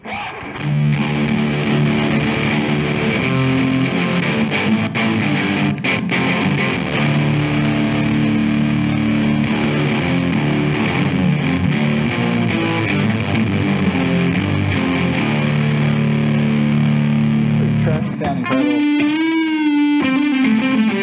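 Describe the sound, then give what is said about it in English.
A loud electric guitar through a Proco Rat distortion pedal plays thick, fuzzy sustained chords and riffs, closing with a few bending, wavering notes near the end; no talking. “It's a great go-to distortion, and for $88, I mean, how can you argue with it?”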